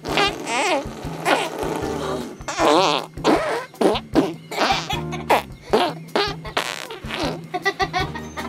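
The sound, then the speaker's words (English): A child shows off a talent by blowing a long run of wet, sputtering raspberry fart noises with the mouth, burst after burst with short pauses, loud, no talking. “The fart talent.”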